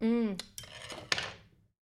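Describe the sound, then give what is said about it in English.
A spoon stirring a piña colada clinks against a glass a few times at an uneven pace, opening with a brief ringing tone, then sharp bright taps that fade out. No one speaks. “I need to stir this.”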